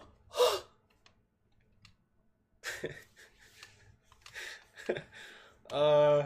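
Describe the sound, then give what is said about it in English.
A single voice imitates a crowd gasping: a series of sharp, breathy intakes spaced across a few seconds, fairly loud, ending in a brief voiced, drawn-out exclamation. “Just like everybody gasped. They're like...”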